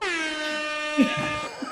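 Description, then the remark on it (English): A loud, sustained air horn blast rings out steadily for nearly two seconds, with a brief burst of voice cutting in near its end. “Anyway, I've just been dying to honk the horn.”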